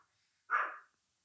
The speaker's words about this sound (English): That's a doggy barking.